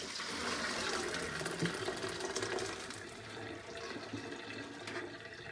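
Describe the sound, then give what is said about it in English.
Water gushes steadily out of a hot pot of cooked lentils, tipped away from the person pouring, into a strainer in a sink: a loud, continuous rushing splash that eases slightly toward the end. No one speaks. “So I'm going to tip and pour.”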